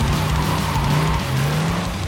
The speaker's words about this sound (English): Key in ignition. Key in ignition. And he put the key in ignition and started and peeled off.